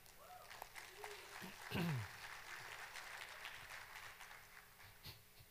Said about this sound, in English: You're kind of clapping for yourself. So I think you want to do a better job, right? So, woo! We're awesome.